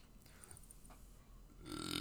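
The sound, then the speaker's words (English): A short, feeble burp rises near the end out of quiet background noise, soft with little force behind it; no one talks. “Oh, that was a weak burp.”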